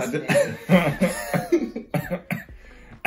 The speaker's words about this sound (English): Excuse me, sir. I'm are you coughing? I'm coughing through a laugh. I didn't cough any time before this.